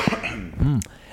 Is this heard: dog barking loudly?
no